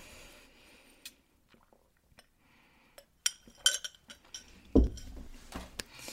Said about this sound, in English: So yeah, I'm just gonna take a quick sip of my water here.